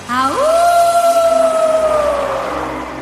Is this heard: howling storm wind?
yes